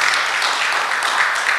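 A crowd applauds steadily, many hands clapping at once in a dense, even wash of sound that holds at a consistent loudness throughout.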